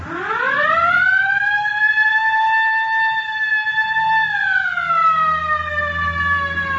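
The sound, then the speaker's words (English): A police car siren wails loudly, sweeping up in pitch, holding a long steady tone, then sliding down near the end, with a low engine rumble underneath and no voices, as officers chase a bus to pull it over. “All right, hit the siren.”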